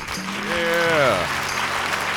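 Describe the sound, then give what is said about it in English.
Steady, dense applause fills the whole stretch, with a single drawn-out vocal whoop rising and then falling in pitch over the clapping in the first second. “get another round of applause. Another round of applause.”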